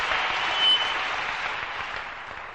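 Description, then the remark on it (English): An audience claps for the Holy Ghost during a sermon, a dense, sustained burst of applause, many overlapping claps forming a steady, bright wash of sound that holds its loudness for a couple of seconds. “How many can understand what I give the Holy Ghost a big hand clap?”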